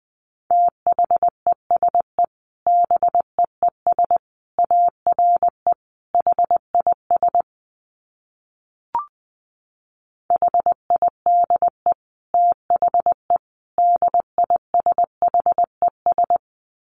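Morse code sent at 20 words per minute: a steady mid-pitched tone keyed in quick dots and dashes, grouped into bursts, with one long pause and a faint blip partway through.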